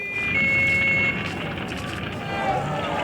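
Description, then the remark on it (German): A dense, continuous roar of a hotel fire, its middle floors in flames, with rumbling fire engines, steady tonal whines threading through, and indistinct voices faintly mixed in as guests are rescued over long fire ladders. “Die mittleren Etagen des Hotels standen in hellen Flammen. Hotelgäste wurden über lange Feuerwehrleitern geborgen.”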